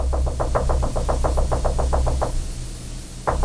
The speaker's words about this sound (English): Sounds like a woodpecker. Exactly. We kept on hearing a woodpecker, right? And they can be really loud at times when you hear them.